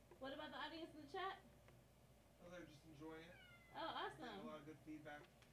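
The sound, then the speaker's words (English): A big orange domestic cat meows repeatedly while giving cuddles, a series of drawn-out, wavering cries separated by short pauses, with a faint low hum underneath. “I don't know if y'all can see him on the camera, but the kitty is giving me cuddles.”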